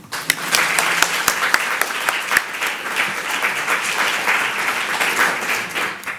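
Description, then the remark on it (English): An audience at an Aristotelian Society meeting breaks into steady applause for the outgoing president, dense overlapping claps sustained for several seconds, with a few sharper individual claps standing out near the start. “I think we should give him a round of applause.”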